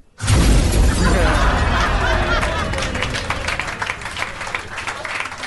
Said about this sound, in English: Like, explosion's been done, mate.